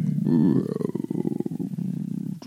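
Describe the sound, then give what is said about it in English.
A low, drawn-out bellowing moan like a whale call from a creature down below, loud, with a rough pulsing, growly texture that wavers in pitch before fading out after about two seconds. “kind of some low, almost whale type. Like whale, W-H-A-L-E, or yeah.”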